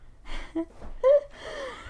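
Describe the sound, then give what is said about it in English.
A female cat snoring right next to the microphone, a few raspy, breathy inhales and exhales with brief squeaky, whistling tones in between. No one talks. “She's like, will not stop snoring. Like, she has to be right here, right next to the microphone and snoring.”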